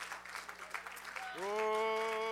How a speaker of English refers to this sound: Let's clap our hands to him in thanksgiving right now. Thank you, Jesus.